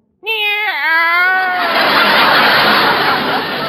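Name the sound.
cat meowing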